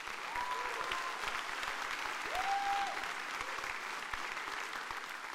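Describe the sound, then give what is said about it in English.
An audience at a Mother's Day service applauds the women present, clapping steadily for several seconds in a dense wash of many hands at a fairly even loudness, with a couple of brief whistles rising above the noise. “How about we give them a clap?”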